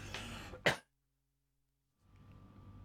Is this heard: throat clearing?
yes